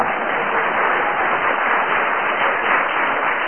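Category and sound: crowd, audience applause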